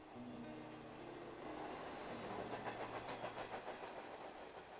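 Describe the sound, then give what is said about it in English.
A train speeds through an inland plain, rolling steadily along the rails with a low rumbling hum, then a rhythmic clickety-clack of wheels over track joints grows more pronounced, continuous throughout. “As my train sped through an inland plain, I turned my thoughts to Marley's case.”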